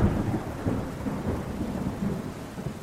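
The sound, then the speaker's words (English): A raging thunderstorm at Kennedy Space Center in Florida rumbles steadily, with deep rolling thunder over a constant hiss of heavy rain, loud throughout, with no voices. “But a raging storm at Kennedy Space Center in Florida caused NASA to change plans.”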